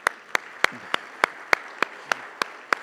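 Audience applause in a steady, even rhythm: about ten sharp, crisp claps land at regular intervals, sounding almost in unison, with no talking over them, congratulating families on newborn babies.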